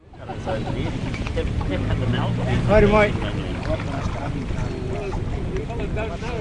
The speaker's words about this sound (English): On a sunny Saturday morning in February, a small fleet of kayaks and a Pennsylvania riverboat are launched on the murky brown waters of the Wairua River, west of Whangarei.